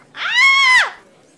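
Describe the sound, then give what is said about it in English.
A single short, high-pitched scream rises sharply, holds a shrill, steady pitch for under a second, then drops away; a voice imitating a woman's frightened shriek, loud. “And she sees the light show that you're putting on and she is just going to scream.”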